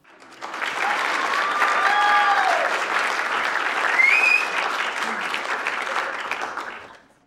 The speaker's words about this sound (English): Both of these are so exciting. Let's give that round of applause and joyfully celebrate these accomplishments.